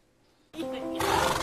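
A horse whinnies loudly, one harsh, drawn-out neigh that bursts in after a short quiet moment and swells stronger toward the end.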